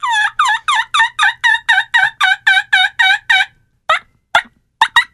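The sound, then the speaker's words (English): A reed mouth call imitates a turkey: about a dozen loud, raspy yelps in a quick steady run, followed by a few sharp, scattered clucks, with no talking. “This is a mouth call.”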